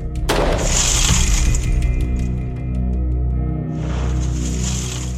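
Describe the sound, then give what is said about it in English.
At a firing range, a police officer fires a single sharp gunshot through an already broken glass door as a test, followed by several seconds of crackling, tinkling glass and a second burst of fragments near the end, over a steady low rumble. “We had Officer Branion shoot the door again.”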